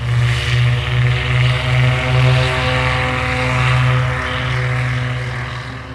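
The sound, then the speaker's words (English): Loud, steady drone of propeller warplane engines with strong harmonic hum, sustained throughout, swelling slightly as Japanese dive bombers and torpedo planes take off from aircraft carriers on the morning of 7 December 1941; no voices. “At 6:15 on the morning of the 7th of December 1941, 50 dive bombers and 70 torpedo planes took off from the Japanese aircraft carriers.”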